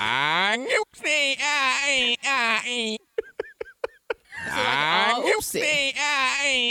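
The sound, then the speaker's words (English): A voice saying the word 'Squinga' played backward, producing warbling, bleating, goat-like cries in two long bursts, separated by a short stretch of rapid clicks and choppy fragments, fairly loud. “Let's reverse it. We're listening for the GOAT.”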